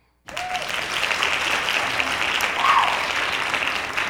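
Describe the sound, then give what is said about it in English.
A burst of steady applause, many hands clapping at once in a dense, continuous patter that starts abruptly after a short silence and holds at an even, fairly loud level. “Hand claps for that.”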